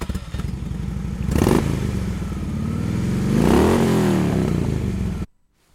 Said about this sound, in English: Right, what was that? See if you can guess. Play it again. Specifically, it's a motorbike, but specifically, it's a Harley Davidson.